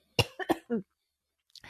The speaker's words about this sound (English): I can't even talk about it. Yep. It's making me cough. Uh-oh. Choking on the griff of it all.